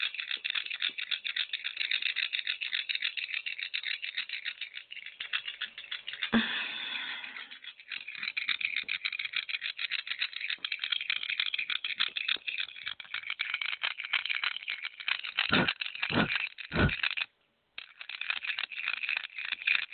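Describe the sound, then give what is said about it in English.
Small rose quartz and tiger's eye stones being mixed together rattle and clatter continuously, a dense scraping jumble with a few sharper clicks near the end and a brief pause before the rattling resumes. “Mix this rose quartz with this tiger's eye.”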